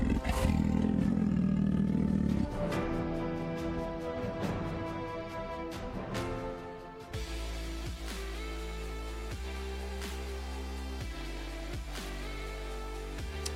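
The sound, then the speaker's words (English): A big jungle cat from Cougar Home Defense lets out a loud, deep, rumbling roar for a couple of seconds, then steady droning tones take over, punctuated by regular heavy thumps. “Cougar Home Defense sends your big-ass jungle cat with 24 hours worth of food.”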